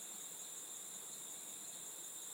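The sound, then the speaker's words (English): Cicadas and crickets chirp outdoors in a steady, high-pitched drone that never lets up, fairly soft, with no voices over it. “You can hear the cicadas and the crickets.”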